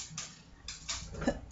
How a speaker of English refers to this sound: Dulcet tones of my cat scratching, doing her nails.